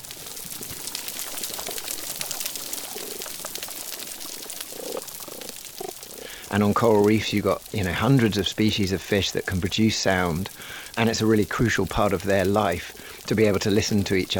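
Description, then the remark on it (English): Dense, constant crackling of snapping shrimp, small shrimp about the size of a thumb, on a coral reef. A hiss of countless sharp clicks is heard alone for several seconds, then continues beneath a person talking. “But then in the background, you probably also noticed, I mean, it's almost the foreground, you can hear this crackling sound, constant crackling. That's the sound of snapping shrimp, which are small shrimps about the size of your thumb”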